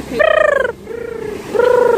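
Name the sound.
person imitating pigeon cooing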